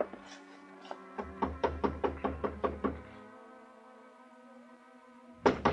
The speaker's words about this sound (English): walked 3 blocks to Carla's apartment house, climbed the stairs, and knocked on her door